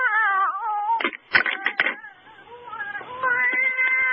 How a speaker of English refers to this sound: Meow. You have a hairball. Meow.